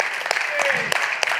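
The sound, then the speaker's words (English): An audience claps steadily, a dense crackling wash of many hands with a few sharper, louder claps standing out, sustained through the whole moment with a faint voice underneath. “Yeah, and that starts clapping about.”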